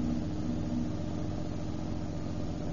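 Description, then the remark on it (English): A car engine hums steadily as the car pulls in to stop, a low, even rumble that holds at the same level throughout. No voices. “Here's a good place to pull in.”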